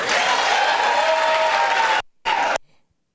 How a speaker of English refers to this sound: I don't understand. I don't know why they're applauding.